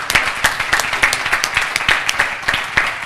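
An audience applauds together to honor a man who graduated from Teen Challenge, a dense, steady wash of many hands clapping at once, loud, with a few sharper claps standing out in a loose rhythm.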